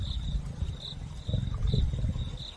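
A father lion gives deep, rumbling growls and short roars in a few bursts as two lion cubs bother him while he tries to sleep, while a faint high-pitched insect-like whine pulses steadily in the background.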